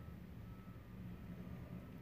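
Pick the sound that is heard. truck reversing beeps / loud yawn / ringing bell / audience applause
truck reversing beeps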